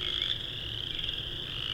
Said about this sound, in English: I wonder if just because of how loud the frogs are, it's only singing in the tones that know it'll be heard in.